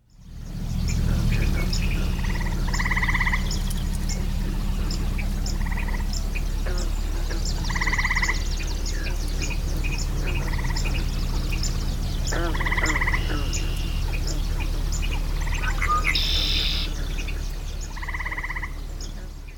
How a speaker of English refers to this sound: you might have picked up that there were some swamp sparrows in there